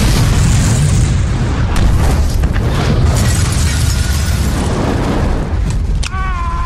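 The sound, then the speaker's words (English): A loud, sustained explosion rumble with heavy low-end roar and crackling debris, ending in a sharp burst followed by ringing, whistling tones. “I love bombs.”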